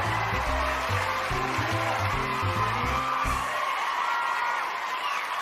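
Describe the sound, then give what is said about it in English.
The audience of the Narrative After Show claps and cheers steadily for several seconds as the guests and host are welcomed, a dense, even wash of applause. A short burst of bass-heavy music plays underneath at first, then stops while the clapping carries on. “Aren't they nice to be clapping for us?”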